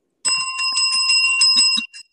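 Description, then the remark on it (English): A bright, metallic bell rings continuously in rapid trills for about a second and a half, fairly loud, then stops abruptly; no voices are heard. “I need a bell.”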